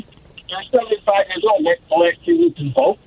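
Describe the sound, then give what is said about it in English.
A voice on a phone line comes through garbled and choppy, breaking up into short bursts of tinny, narrow-band speech that is impossible to make out. “your phone is just turning to mush here. I'm having a hard time hearing you, so I'm going to move along.”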